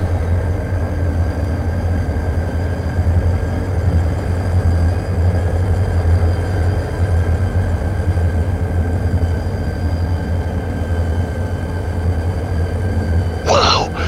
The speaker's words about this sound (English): over the mountains, over the plains, over the rivers, here come the trains.